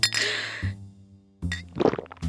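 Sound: glasses clinking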